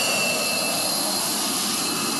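An IDF fighter jet roars down the Jiadong wartime runway, a narrow strip of road, on an emergency takeoff during War Games drills. Its loud, steady engine noise fills the air with a thin high-pitched whine riding on top. No voices are heard.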